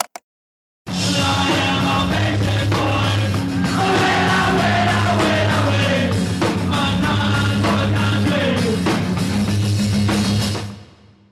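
A concert crowd at the Wilson Center in Washington, D.C., in 1988, at a benefit for the National Coalition for the Homeless, going wild, yelling and whooping over a loud rock band with heavy, throbbing bass. The roar kicks in abruptly, stays dense and constant for about ten seconds, then cuts away.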